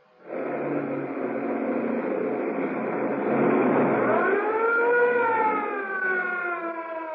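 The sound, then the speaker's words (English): A police siren wails over the roar of speeding engines as a police car chases a fleeing sedan at breakneck speed through narrow streets around a waterfront, its tone sweeping upward midway and holding steady and loud for several seconds, with no talking. “Threading their way at breakneck speed through the narrow streets around the waterfront, the police car follows the fleeing sedan.”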